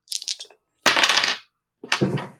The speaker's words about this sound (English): You feel the ship being rocked by some sort of gunfire.